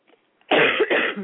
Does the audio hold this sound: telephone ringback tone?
no